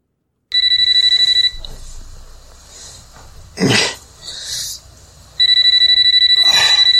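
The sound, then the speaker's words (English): A loud electronic telephone ring sounds in two long bursts separated by a pause, with rustling and a cough-like noise in between and no talking: a late-night phone call to a man sleeping on a couch. “he's sleeping on the couch, and he gets a late night phone call.”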